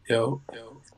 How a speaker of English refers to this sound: You ain't got no echo on your end, do you? A little bit, I think so. Hold on, let me cancel it. I got echo cancelization.